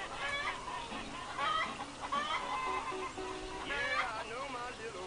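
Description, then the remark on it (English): A flock of Rhode Island Red chickens clucks and squawks continuously, with several birds calling over one another in short, overlapping bursts at a steady, moderately loud level throughout. “Got them nice, long-legged, Rhode Island Red chickens.”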